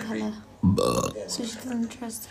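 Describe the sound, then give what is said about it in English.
A loud burp erupts for about half a second, deep and rumbling, with a man's voice talking just before and after it. “Sorry for the burp, guys.”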